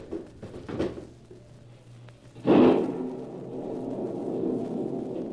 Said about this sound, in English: I want to hear the storm. I want to hear the thunder crash and the wind scream.